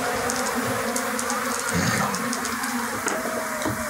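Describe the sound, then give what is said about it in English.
A dense, steady drone of many flies buzzing, filling the whole stretch without pause, with faint muffled voices underneath. “As soon as it does, it is swarmed by any of the flies that aren't already in the whirlpool and devoured immediately.”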